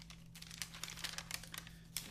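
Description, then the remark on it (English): Paper crinkles and rustles in a run of irregular crackly bursts as it is handled, fairly quiet over a steady low electrical hum, with no talking. “There's nothing on this fucking paper.”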